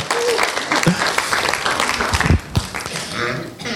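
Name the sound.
audience applause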